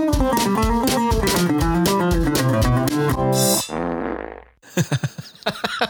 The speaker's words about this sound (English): We got to get that fart in there. Got to get the farts in there. Oh, he's squeaking one out.